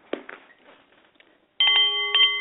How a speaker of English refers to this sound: The Nepalese Meditation Bowl is chiming, and that means it's time for the Art of the CEO